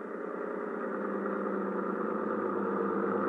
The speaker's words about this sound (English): Oh, wait a minute. Wait a minute. That boat coming in is probably ….